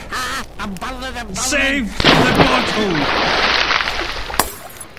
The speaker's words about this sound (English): And sounded like his bottle in his back pocket smashing.